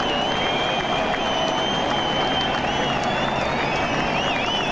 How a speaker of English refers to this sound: Oh no, it's cheers. It's more cheers from the carrot fans. That's right, it's more cheers from the carrot fans. Let's have some more cheers from the carrot fans.